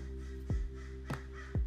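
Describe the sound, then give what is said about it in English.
A bird calls outdoors three times in short, harsh bursts spaced unevenly over a steady low background hum. Nobody speaks. “You hear that bird?”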